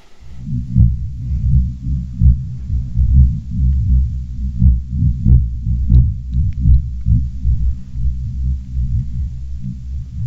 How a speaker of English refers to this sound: Wow, it sounds to me either like a heartbeat or a motorboat underwater. It does. yes. So what we did to generate this audio track was using this geophone, which measures the vibration through the ground